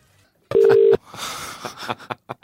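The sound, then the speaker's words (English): A loud, steady phone tone sounds for about half a second after a call cuts out as the phone goes dead, followed by soft crackling, rustling noise and a few faint clicks, with no one talking. “Oh, my phone's gone dead.”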